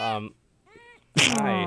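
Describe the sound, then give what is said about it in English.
A small kitten in a cast, treated for flat-chested kitten syndrome, meows three times in a row, short high-pitched cries with a quieter one in the middle, ending in a louder, longer, drawn-out meow. “Also, the meows are killing me. She won't stop.”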